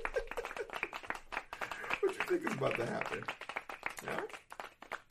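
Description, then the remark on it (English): An audience claps in a steady patter of many hands throughout, with voices shouting and laughing over the applause. “Laugh it up. Clap it up.”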